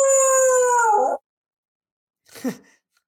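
A dog lets out a loud, sustained howl that sags in pitch before breaking off, then after a pause gives a shorter, yelping wail. No one speaks.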